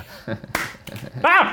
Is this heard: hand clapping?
yes